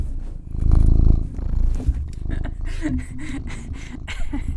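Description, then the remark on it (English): A cat purrs, a loud low rumble that swells at the start and continues steadily with soft breathy pulses throughout. “Cat.”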